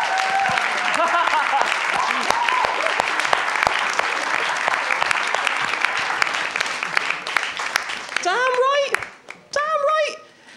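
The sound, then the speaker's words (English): A crowd applauds in a loud, steady wash of clapping, with high whoops and cheers rising over it, then a few shrill cheers as the clapping thins out at the end. “Round of applause for”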